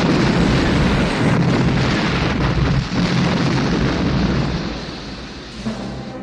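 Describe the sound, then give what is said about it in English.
A massive, loud explosion of an aircraft hangar blowing up at a base in a film, its dense roaring rumble sustained for several seconds with crackling debris before easing slightly at the end, with no voices. “And when he's at the base, that explosion when the hangar blows up is one of the best that I've ever seen, I think.”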